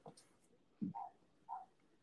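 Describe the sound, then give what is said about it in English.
A neighbor's dog barks a few times outside, short muffled yelps spaced about half a second apart, faint and with no voices present. “These neighbors are just like, they're fucking deaf to their own dog barking.”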